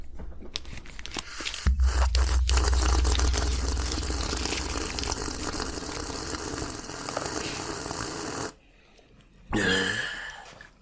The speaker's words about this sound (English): Now I'm just going to have a sip of Bloor's water here.